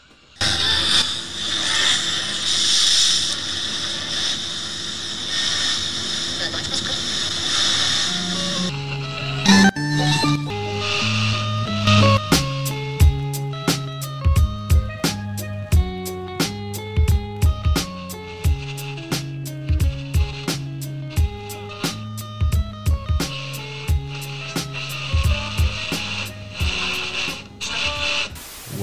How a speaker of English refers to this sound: Man, honey, you know we're just going to be flipping through static the whole time, man.